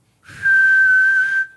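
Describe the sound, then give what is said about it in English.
A person whistles one loud, steady, high note for about a second, breathy, in an attempt to imitate a sharp two-finger whistle. No one speaks. “Oh, that's just me whistling.”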